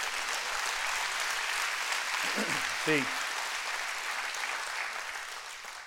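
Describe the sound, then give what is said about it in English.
An audience claps steadily, a dense, even wash of many hands that holds for several seconds, with a man's voice briefly speaking a word over the applause midway through. “Clap your hands and say, I receive that.”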